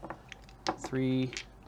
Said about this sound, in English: All right, so I've got... Yes, and that one. So I need to roll 10 dice.